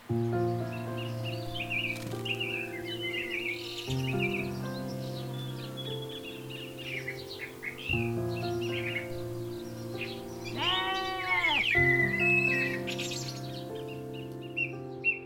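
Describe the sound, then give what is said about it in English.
Bright spring birdsong, with rapid chirps and trills repeating throughout, set over a steady, sustained musical drone. A brief warbling burst stands out near the end, and there is no speech. “The light, the birdsong, the colour, the warmth.”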